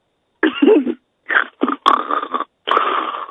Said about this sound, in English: What was that? That was her snoring.